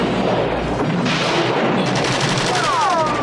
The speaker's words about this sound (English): So in the first film, if you watch part one, you see that they could not take this dude down. It was a group of cops in a circle, just filling his ass up with bullets.